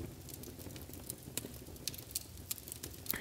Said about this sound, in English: Listen to that fireplace roar.